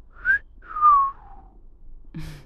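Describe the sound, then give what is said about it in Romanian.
A person whistles two notes: a short high tone, then a longer one that slides downward and fades. A brief low vocal sound follows at the end. “O să încerc și eu să șuier.”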